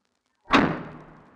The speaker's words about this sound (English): The pantry door shut on its own, shaking the walls around it. A bone-chilling vibration reverberated throughout the entire house in an instant, and was then followed by an eerily dead silence.